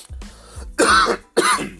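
A person clears their throat with a low rumble, then lets out two loud, harsh coughs in quick succession, close up and with no talking.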